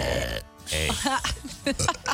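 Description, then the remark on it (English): A loud burp sound effect with a croaking, drawn-out rumble, briefly broken by a short pause, with voices chattering around it. “No, that was a sound effect. That was definitely a sound effect.”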